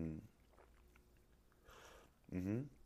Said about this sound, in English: But where was I? Getting a sip of coffee is where I was at right now.